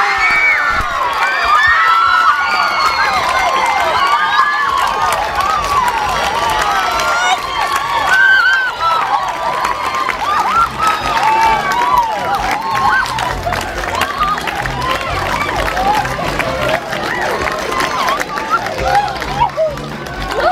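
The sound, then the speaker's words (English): A large crowd of family and friends at the Nova, watching the Oscar announcement for Harvey, shrieks and cheers nonstop, many excited voices overlapping in high squeals and shouts, loud, with scattered clapping mixed into the din. “And to hear them all shrieking and crying.”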